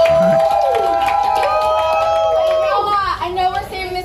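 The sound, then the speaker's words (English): A crowd at New York state senate candidate Kristen Gonzalez's victory party in Brooklyn cheers loudly, with whoops and sustained shouts rising over a steady wash of applause and excited chatter that continues throughout. “And the crowd went wild because she is a quote Democrat.”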